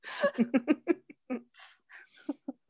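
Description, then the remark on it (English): Ted the dog lets out a quick run of short barks, followed by a few breathy huffs and a couple more soft woofs. No one speaks. “Ted the dog agrees.”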